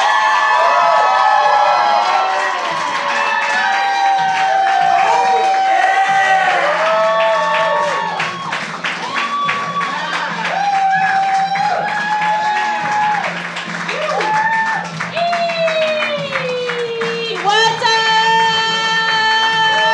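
A loud crowd cheers, whoops and shouts with steady clapping throughout, high excited voices rising and falling over a dense wash of applause for the whole stretch.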